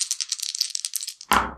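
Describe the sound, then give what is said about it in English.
Dice rattle rapidly in a hand or cup for about a second, then clatter onto a table with a sharper, fuller landing, rolled for a firearms attack in a game. Fairly quiet, with no talking. “Roll me a firearms attack.”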